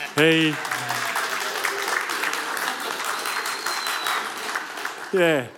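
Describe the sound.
A crowd bursts into steady applause for a man during a sermon, a dense wash of many hands clapping for several seconds, framed by a brief voice at the start and again at the end.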